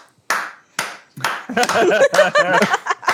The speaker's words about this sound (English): Learn to clap, it's dead simple. You just do this. That's it. That's clapping. You don't need to do anything more.